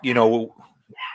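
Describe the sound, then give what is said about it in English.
A single loud dog bark with a falling, drawn-out pitch, followed by a brief pause and a softer, shorter noise. “so Adam's got kids, I got dogs. So you can pick one. You get the dogs for now.”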